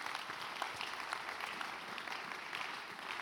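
Steady applause from a crowd, a dense patter of many hands clapping continuously at an even level, with no voices standing out above it.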